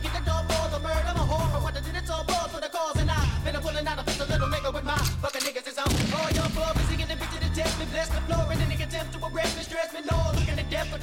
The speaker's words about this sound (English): It was kind of like rebellion music for me to listen to that and to hear a song with gunshots going off every 5 seconds on the record.